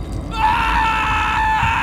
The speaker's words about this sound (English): The creature backed away, eating while I flopped around, spraying blood and screaming at the top of my lungs.